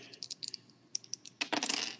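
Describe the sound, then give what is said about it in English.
Small hard objects click and rattle, a scatter of quick taps that builds into a brief clattering burst as dice are rolled during a game and tumble and settle on a table. No one speaks. “So I'm going to big whammy again and hope the dice continue to treat me well.”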